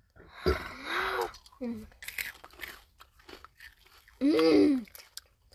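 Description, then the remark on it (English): Wet, sticky chewing of popcorn-flavored Jelly Belly jelly beans in short crunchy bursts, broken up by loud voiced murmurs and gasps, with one strong drawn-out vocal sound near the end. “Popcorn flavored jelly beans. Like Jelly Belly flavored like popcorn.”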